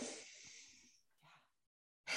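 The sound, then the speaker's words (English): A long, steady exhale through the nose, as in an alternate nostril breathing exercise, fades out, followed by a brief softer breath, a pause, then an abrupt noisy burst at the end. “Yeah, so I would say alternate nostril breathing is really good.”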